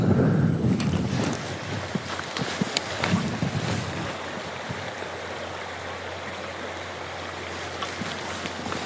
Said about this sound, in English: That wind is nasty. Hear it on the microphone. You feel it too. There's a bite to it.